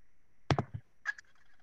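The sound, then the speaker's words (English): Cranes calling: a quick burst of three rough, rattling notes followed by a brief higher trumpeting cry, clear, with no talking. “Not the cranes again.”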